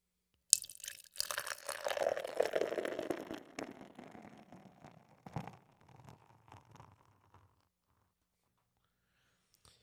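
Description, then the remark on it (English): A hop-forward IPA beer pours steadily into a glass for a few seconds, a bright fizzing rush that thins out to trickles and a few drips, fairly quiet, with no one talking. “All right, let's pour this motherfucker.”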